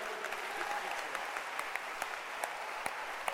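An audience applauding steadily, a dense wash of many hands clapping with a few sharper individual claps popping out, holding an even level throughout with no voices.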